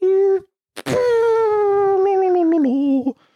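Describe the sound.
A voice mimics a fart: a short buzzing tone, a quick sputtering burst, then a long, loud, wavering drone that sags slowly in pitch, sounding almost like a groaning croon.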